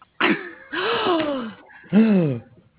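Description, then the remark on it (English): Three sharp, voiced gasps in quick succession in a tattoo parlor, fairly loud, the last one rising and falling in pitch like a startled intake of breath, with no talking. “Hey, is everybody going to be gasping or getting tattoos?”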